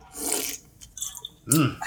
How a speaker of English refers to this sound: Hold on, let me get a sip.